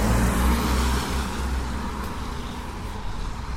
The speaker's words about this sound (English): Why the car is so much louder when it's raining? I guess just the wetness of the road surface against the tires. All those micro interactions of water particles and rubber particles of some sort.